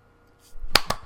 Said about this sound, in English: That's me clapping.